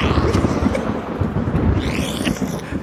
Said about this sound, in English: Thunder cracks. Thunder cracks.